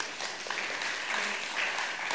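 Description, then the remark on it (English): A crowd applauds the actors after a role-play scenario, the dense crackle of many hands clapping at an even, moderate loudness throughout, with no distinct voices rising above it. “Give our actors a round of applause.”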